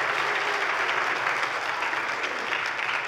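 A crowd of people claps steadily during a talk about the Holy Spirit, applauding a volunteer after a balloon demonstration, a dense, even wash of applause that holds at a constant level throughout without any voices standing out.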